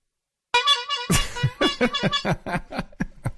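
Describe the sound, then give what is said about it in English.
A plain bulb horn, not an Ugo horn, with a bulb on the end, gives a bright, nasal honk, then a burst of noise and a rapid run of short, choppy pulses that trail off over a few seconds. “Well, it's actually not an Ugo horn. It's just a horn.”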